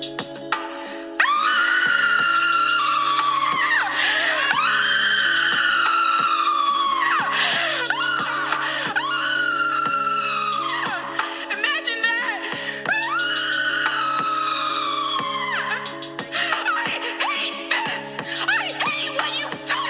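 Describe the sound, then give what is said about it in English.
A person screams over and over, loud drawn-out wails repeating every couple of seconds, with a steady low droning tone running underneath throughout. “Oh, I am going to spend the next minute screaming, because that is what is going on in here.”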